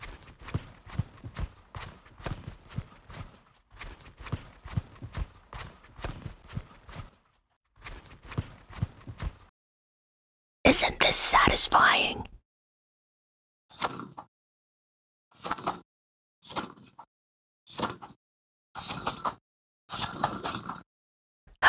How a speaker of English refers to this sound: It's time for my favorite, toilet paper. This is the Cadillac of toilet paper. 3-ply, ultra soft. Let's unroll it.